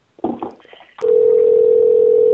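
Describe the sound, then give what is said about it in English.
A few brief muffled knocks and rustles give way to a loud, steady telephone dial tone that hums continuously, unbroken, to the end. “You dial. I'll dial the numbers.”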